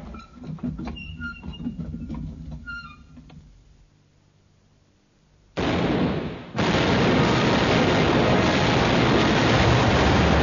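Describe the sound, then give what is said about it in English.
Squeaky, creaking clatter gives way to a short lull, then a heavy blast from a ship's cannon bursts in and swells into a loud, continuous roar of the ship's guns firing at Spanish vessels that runs to the end. “Run up, train, and fire as you get the aim.”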